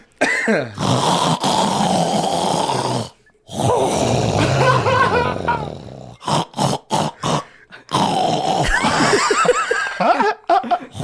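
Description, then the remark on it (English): A person loudly imitates a man's heavy, rattling, cartoonish sleep-apnea snoring with long raspy inhales and gasping snorts, broken by short pauses and sputtering bursts. “It's like he's the bear dad in a family animated show that has sleep apnea.”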